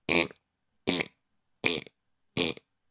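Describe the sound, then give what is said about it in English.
A voice imitates a small wind-up clock alarm with four short, evenly spaced buzzy bursts, each loud and harsh with a rough, rasping tone, separated by brief silences. “Small little buzzes, like a little teeny thing.”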